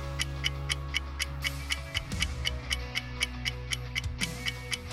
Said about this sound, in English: Just saying, clock's ticking.